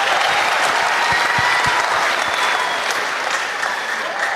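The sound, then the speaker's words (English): A crowd claps steadily, a dense wash of many hands applauding at an even, loud level for several seconds with no voices rising above it. “Yep, you can clap for that for sure.”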